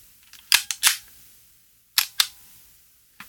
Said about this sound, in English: It's got a very big advance lever here on top, and here is the sound it makes.